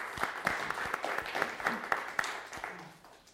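A panel-talk audience breaks into a round of applause for a speaker, many hands clapping in a dense, steady patter with a few sharper individual claps standing out, fading slightly toward the end.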